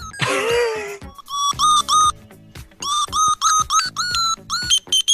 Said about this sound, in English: I've got a key, right, that when it's in the door, it hasn't worked for ages, and it's one of those key things that when you clap, you find your keys, because it goes da-da-da-da-da-da-da, like a phone from the from like the early 90s.